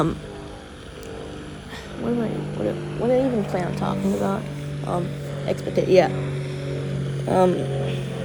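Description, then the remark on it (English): A steady, droning engine hum of an airplane passing overhead runs continuously underneath a person talking. “Fuck the plane. This plane, shut up!”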